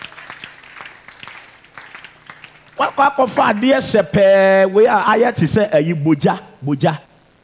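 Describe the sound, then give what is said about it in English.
An audience claps steadily for a few seconds at a modest level, then a loud, animated male voice starts speaking over the fading applause. “all the ladies who are not clapping, I suspect you.”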